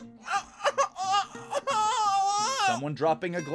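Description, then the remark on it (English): A baby cries in a restaurant in loud, wavering wails: a few short broken sobs, then a long sustained high-pitched cry that rises and falls before trailing into choppy whimpers. “A baby for some reason.”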